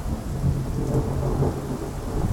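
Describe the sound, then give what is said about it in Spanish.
Steady, dense rain pours down continuously, fairly loud, with a deep low rumble underneath like thunder rolling through the storm. No voices are heard. “Y hay un nombre de amor que nunca digo, pero que digo cuando llueve así.”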